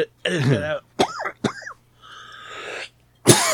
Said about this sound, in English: Edit my coughing out.